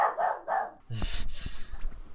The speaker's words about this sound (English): That dog is very insistent.